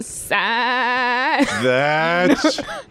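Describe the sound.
A loud human voice imitates a singer, holding two long notes with a rapid, quavering vibrato that sounds like a goat bleating, followed by a shorter wavering note.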